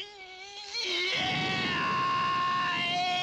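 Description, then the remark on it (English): A loud, exaggerated action-movie fight scream in the style of Van Damme, given with a kick, drawn out and strained, starting thinner and then swelling into a raspy, sustained howl that carries through to the end with no talking. “Yep, bit of a Van Damme scream there.”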